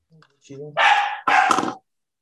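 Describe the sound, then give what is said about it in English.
A dog gives two loud barks in quick succession, each with a short sharp onset, after a brief whimper-like whine. “I'm gonna let my dog.”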